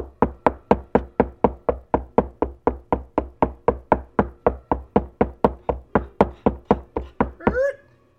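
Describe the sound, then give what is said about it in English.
Persistent, steady knocking on a door at Weston Manor, roughly three sharp raps per second for about seven seconds, fairly loud, ending with a brief voice-like sound. “You were knocking.”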